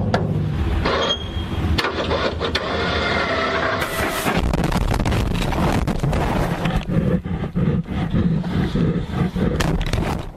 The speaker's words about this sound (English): By the way, don't miss the frightening panting of the grizzly bear at the very end. Here, listen.